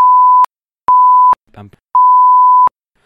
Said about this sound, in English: I want to be clear when I say beep bleep bleep, like rappers aren't R2-D2